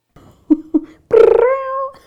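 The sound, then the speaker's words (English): A person imitates a cat with two short, chirpy mews followed by a longer, drawn-out meow that rises and then holds, sounding fairly loud. “Meow, meow, meow, meow, meow.”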